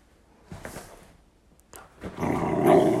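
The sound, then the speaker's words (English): A dog growls low, then breaks into a loud, sustained bark-growl that builds toward the end, with short pauses between the rumbling bursts, as its owner stops playing with it. “See, I'm not playing, so that's when he starts to bark.”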